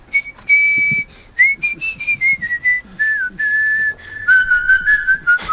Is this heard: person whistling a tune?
yes